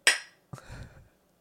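Glasses of Stella Artois beer clink together once in a toast, a bright ringing chime that fades over a few tenths of a second, followed by a duller knock and brief low clatter.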